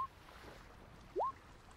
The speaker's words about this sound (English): This is very calming wave music for supposed to be a rough water.